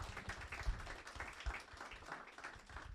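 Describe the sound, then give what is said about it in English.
A crowd applauds steadily for talented students for the whole stretch, a dense, even patter of many hands clapping at once with no talk on top. “Okay, please, a round of applause for our talented students.”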